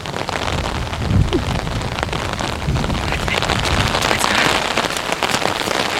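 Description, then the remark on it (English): Steady rain pours down, a dense, continuous hiss of drops pattering on a hard surface with scattered louder splashes, and no voices over it. “In your perfect weather, you love the rain.”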